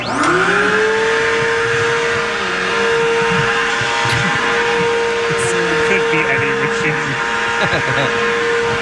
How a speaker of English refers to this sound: Is this a leaf blower? No, it actually is the opposite. It's a vacuum cleaner.